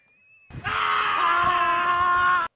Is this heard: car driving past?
no